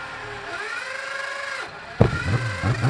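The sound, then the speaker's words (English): After a steady mechanical whine, the engine of a 750 Yamaha racing motorcycle, number 34, suddenly fires up with a sharp, loud burst, running rich with excess fuel, and carries on in a rough, uneven rumble. “You heard that fire up. Just a bit of overfuel in the car.”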